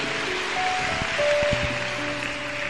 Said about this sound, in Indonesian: Haleluya, Tuhan. Haleluya. Tepuk tangan.